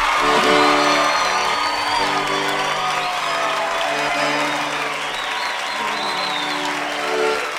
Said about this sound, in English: And moments later, the riders inside meet arrive at the Tumbleweed Amphitheater, just as … is leaving the stage to thunderous applause.